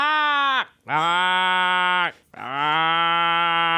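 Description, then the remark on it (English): A person imitates a crow's caw with three long, loud, drawn-out calls, each starting with a quick pitch drop and holding a harsh, buzzy tone, separated by short pauses. “Okay, so this is the crow sound you effect.”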